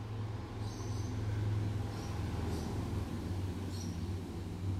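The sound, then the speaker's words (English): A motorbike engine drones low and steady on the road, a continuous rumble that swells slightly and fades, with a few faint high chirps above and no one speaking; heard at 5:42 on Monday morning, 24 December, Christmas Eve. “Sounds like a motorbike to me.”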